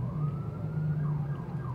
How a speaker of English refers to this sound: Okay, that police car, he's just driving by. He's just like, hey, I'm here, lol.